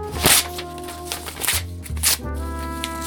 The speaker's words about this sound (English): Rip up the story. That's my only copy! Rip it up!